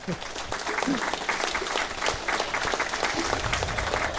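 An audience claps steadily for several seconds, a dense, even patter of many hands at a fairly strong level without a break.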